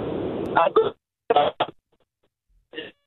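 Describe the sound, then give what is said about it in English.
A thin, band-limited phone-line voice of a caller from Maumelle cuts in and out in choppy bursts separated by dead silences, too garbled and broken up to follow, fading into a last short fragment. “we're having a tough time making you out.”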